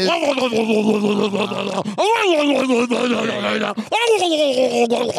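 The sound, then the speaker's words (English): A voice makes drawn-out, croaking burp sounds, three long guttural swells that rise and fall in pitch, loud and continuous with no words. “Burp.”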